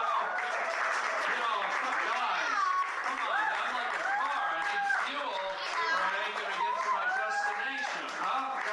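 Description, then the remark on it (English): A comedy club audience applauds steadily for several seconds, the clapping mixed with a dense wash of cheering, whoops and crowd chatter, loud throughout. “You know, how about a round of applause on that stuff?”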